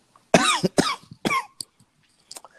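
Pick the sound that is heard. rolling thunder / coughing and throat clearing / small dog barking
coughing and throat clearing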